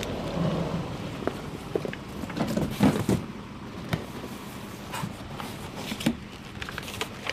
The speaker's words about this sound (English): We've just come to a little cul-de-sac here in Paraparaumu. I'll just hop out and I'll... Fortunately, the van's only got one sliding door on this side.